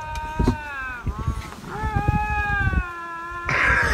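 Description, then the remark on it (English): Two lynx going nose to nose trade long, wavering yowls, drawn-out moaning cries that rise and fall almost without pause, loud, ending in a burst of harsher, noisier sound. “have you seen this video of these two lynx going nose to nose?”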